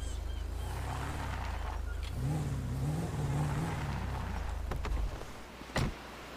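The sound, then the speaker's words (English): An FBI patrol car's engine rumbles loudly, then revs and accelerates with a rising drone before settling, followed by a couple of sharp clicks near the end. “In my state, well, no, my FBI patrol car.”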